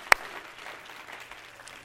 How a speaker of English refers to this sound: Clap your hands again. Hallelujah.